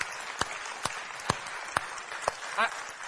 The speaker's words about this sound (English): Can we just give them a hand of applause for what God does through them?